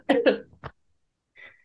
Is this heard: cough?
yes